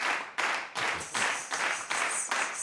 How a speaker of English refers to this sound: I need a crowd. Give me the crowd cheering that one.